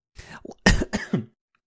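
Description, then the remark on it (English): A short burst of coughing after a sip went down the wrong way: a soft wheezy cough, then several harsh, sputtering coughs in quick succession, loud and choking, with no talking. “sip went down the wrong way.”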